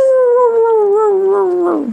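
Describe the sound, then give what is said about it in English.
A person gives a loud, drawn-out wolf-like howl, a single sustained tone lasting about two seconds that wavers slightly and slides downward at the end. No other voices. “I'm kind of a lone wolf over here.”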